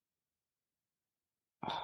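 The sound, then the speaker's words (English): After a long stretch of silence, a single sudden sneeze bursts in, sharp and loud with a breathy, slightly voiced edge, and is cut off as it fades. “Bless you.”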